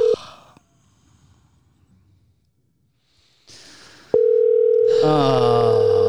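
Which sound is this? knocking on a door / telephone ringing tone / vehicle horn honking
telephone ringing tone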